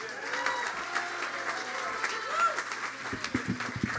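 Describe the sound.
An audience applauds with steady, sustained clapping for about four seconds, mixed with scattered crowd voices and a few low thumps toward the end.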